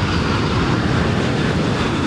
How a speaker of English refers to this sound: The plane carrying First Lady Jill Biden arrived in Savannah Thursday afternoon as she toured a back-to-school COVID-19 vaccination clinic at Savannah's Beach High School.